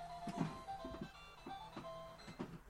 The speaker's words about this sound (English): Right, for some reason, my Kirby alarm clock goes off every morning and night at 9:52. Weird.